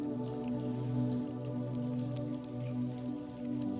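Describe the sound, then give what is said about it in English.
People peel open the bottom portion of sealed communion cups, making scattered small crinkles and pops over a soft, sustained keyboard pad. No one speaks. “Let's eat together. You can open up the bottom portion.”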